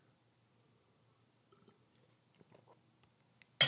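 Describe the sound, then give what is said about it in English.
Quiet sips and wet swallowing sounds of someone drinking water during a break, a few faint clicks and gulps scattered over a few seconds, ending in a sudden loud breathy burst like an exhale or a bottle being set down. “We're doing another solo pod, little water break.”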